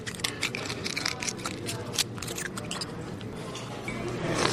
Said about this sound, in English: The lunch crowd at Hog Island Oyster Company on the famous San Francisco Wharf slurps down oysters just as fast as the waiters can chuck them.